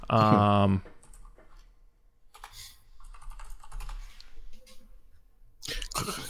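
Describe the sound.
Rapid, clacky keystrokes on a loud mechanical keyboard, coming in irregular bursts of clicks after a brief moment of someone's voice at the start.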